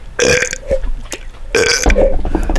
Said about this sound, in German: Ey, wir rülpsen jetzt bis zu einer Stunde.